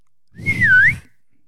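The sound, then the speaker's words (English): A person imitates a whistle: one short, clear note that dips slightly in pitch and then rises again, heard alone over a faint low rumble. “He says, "Well, somebody's whistling at me from behind my dad's house."”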